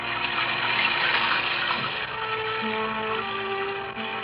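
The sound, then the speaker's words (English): Heavy rain pours down in a dense, unbroken hiss, drumming steadily on the low skylight of a small dressing room, with a faint low hum running underneath and no voices. “It was raining, beating down on the low skylight like a fury.”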